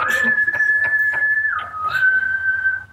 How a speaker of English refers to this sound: You whistle in the tailpipe?